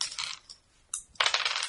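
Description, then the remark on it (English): Dice are re-rolled during a tabletop game to heal a wound: they clatter and rattle across a hard tabletop in a few bright, rapid bursts, a short pause between rolls, then a final burst of tumbling clicks with no talking. “I'm gonna re-roll.”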